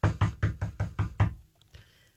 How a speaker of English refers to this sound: She got to his house and she knocked on the door.